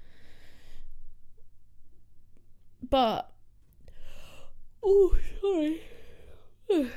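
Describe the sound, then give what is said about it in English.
A loud yawn late at night: a sharp intake followed by a drawn-out, wavering voiced groan that rises and falls in pitch, with brief murmured vocal sounds before and after. “I keep doing these podcasts really late and then yawning a lot.”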